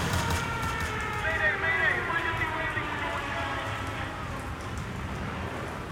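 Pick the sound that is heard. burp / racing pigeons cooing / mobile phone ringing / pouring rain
pouring rain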